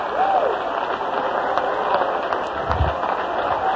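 An audience in a church claps steadily in praise of the Lord, a dense wash of many hands, with a faint voice rising briefly beneath the applause.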